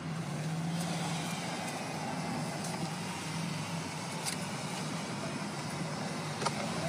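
Continuous road traffic noise, a steady wash of passing cars and trucks with a low engine rumble and a few faint clicks, moderately loud and heard without any talking.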